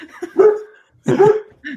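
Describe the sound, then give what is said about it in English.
A small dog yaps twice in quick succession, sharp and fairly loud, with a brief pause between the barks and a softer third yip starting at the end. “Yeah, but yours is a little, your dog's a little yappy thing.”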